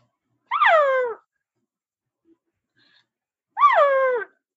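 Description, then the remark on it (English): A person imitates a cow's call known as the assembly call, meaning come over here, twice: two drawn-out, wavering moo-like cries, each under a second long, separated by a few seconds of silence. They are fairly loud, with no other talk. “So can you demonstrate what that sound would be? A cow sound?”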